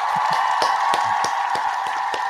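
Steady clapping, with sharp claps landing at a regular, even pace over a constant bright, hissy crowd-like wash. No voices are heard.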